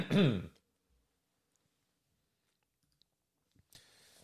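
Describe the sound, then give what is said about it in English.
A single loud, raspy throat clearing, followed by a few seconds of near silence, a couple of faint clicks, and a soft breathy exhale at the end. “So if you were listening, I had to clear my throat.”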